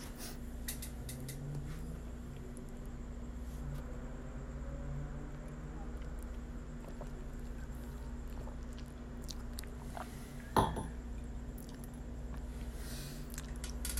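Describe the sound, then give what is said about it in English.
Quiet sipping and swallowing: soft wet mouth clicks scattered over a steady electrical hum, with one brief louder gulp or clink near the end. Nobody speaks. “I'll wait while I take my sip real quick.”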